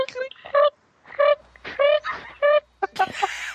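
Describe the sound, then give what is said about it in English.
A voice imitates cricket chirping: about five short, nasal, croaky chirps in a steady rhythm, fairly loud, ending in a breathy burst. “Yeah, classics include awkward silence number one, awkward silence number two, and who could forever forget cricket noises.”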